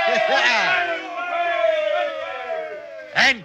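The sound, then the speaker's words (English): A group of male sailors lets out a sustained, rousing cheer at being saved as a huge wave carries their boat to shore, overlapping shouts holding for a few seconds, then a final sharp whoop rising above the rest. “Give a cheer, lads.”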